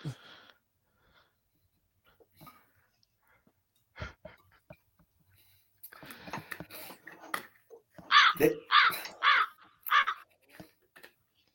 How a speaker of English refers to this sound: My fault. Birds.